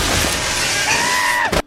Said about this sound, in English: And when he first meets him, this is really fucking short, but this scream is absolutely amazing.